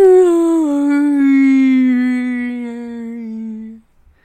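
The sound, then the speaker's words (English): A voice imitates a whale call with one long, mournful moan that glides slowly downward in pitch for nearly four seconds before cutting off. “I think the whale would say...”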